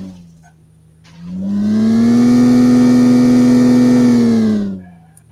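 A video game car engine revs up from a low idle into a loud, sustained, steady drone during a race, holds for about three seconds, then drops back down. No one speaks.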